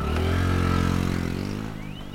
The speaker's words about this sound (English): jumped on her motorcycle and she pushed off.